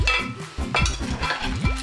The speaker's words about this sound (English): After a few minutes of sauteing the meat and the onions, I'm ready to add my beans. And my barley. Give it a good stir.